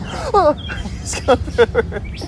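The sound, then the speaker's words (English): Loud, harsh bird calls ring out in a quick series of about five squawks over a steady low rumble of background noise. “What was that bird? Did you hear that? It was a weird bird. Ooh, there's some loud birds Uh-oh.”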